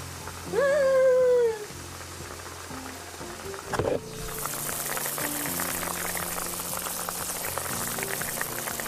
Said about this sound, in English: The soup is boiling.